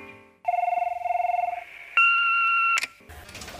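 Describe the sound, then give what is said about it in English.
An answering machine beep on a matchmaking service's message line: a warbling, pulsing electronic tone lasts about a second, then after a short pause comes one long, steady, higher-pitched beep, followed by a burst of crackly line noise. “Just wait for that beep now, if you dare.”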